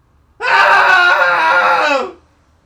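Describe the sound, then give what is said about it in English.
A single loud, sustained cathartic human scream lasting about a second and a half, harmonically rich and strained, starting abruptly and trailing off, with no talking. “Let's do a cathartic scream together for Wednesday, for the hump day.”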